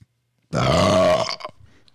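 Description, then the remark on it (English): A single loud, drawn-out burp, low and rumbling with a strong tonal growl, lasting nearly a second before trailing off into a few faint croaks. “I think that was more of a god burp than the original god burp.”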